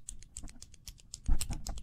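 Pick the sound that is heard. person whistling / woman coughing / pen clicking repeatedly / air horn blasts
pen clicking repeatedly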